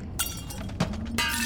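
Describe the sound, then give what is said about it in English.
A glass window shatters in a series of sharp, bright crashes, three bursts within a second and a half, loud, with tinkling debris and no voices. “aimed his crossbow at the broken window as four more bashers forced themselves through the broken glass.”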